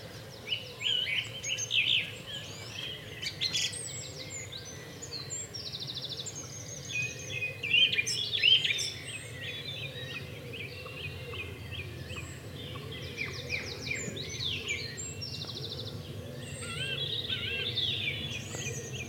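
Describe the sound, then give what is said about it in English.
A song thrush sings a steady stream of bright, varied phrases from a big old ash tree, with lower bird calls and a low rumble of wind in the background. No one speaks. “There's a song thrush in a lovely big old ash tree.”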